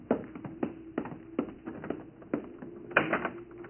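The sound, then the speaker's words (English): The office door of the Ethan Allen Motel is opened with a run of sharp wooden clacks and rattles, irregularly spaced over a low, steady creaking hum, louder toward the end, with no voices. “Close the door.”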